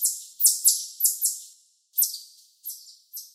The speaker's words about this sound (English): kingbirds sound more shrill, increasing in volume rather than decreasing as they continue. Here's the chipmunk again. And here's the kingbird.